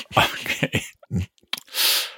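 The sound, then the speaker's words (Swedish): A few halting, voiced gasps build up before one loud, breathy sneeze from a man who sneezes when bright light hits his eyes bursts out, ending abruptly. “Om jag får en strål ljus på mina ögon så nyser jag.”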